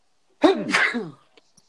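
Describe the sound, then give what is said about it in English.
A single loud sneeze in two quick bursts, a sharp intake followed by an explosive release, then a couple of faint clicks as it fades into quiet. “Bless you.”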